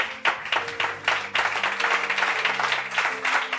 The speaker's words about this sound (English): Will you clap your hands unto Jesus? Are you clapping?